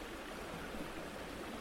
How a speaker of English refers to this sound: I followed it up a grassy hill and noticed the sound of rushing water. I got to the other side to see a large crater.